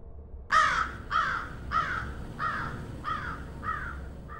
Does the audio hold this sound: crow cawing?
yes